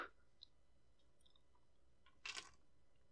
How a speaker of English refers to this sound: The sound of my dice box.